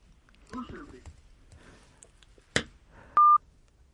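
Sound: phone line tones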